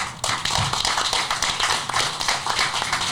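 Applause from an audience: a dense, steady wash of many hands clapping at once, starting abruptly and holding at a loud, even level for about three seconds with no voices.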